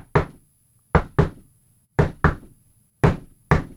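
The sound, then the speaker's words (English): Sharp knocks on a door by Seth in a SmackDown promo, tapped out in a musical pattern: one, then a pair, a pause, another pair, then two more. Distinct, with no voices. “I love that Seth's knock on the door.”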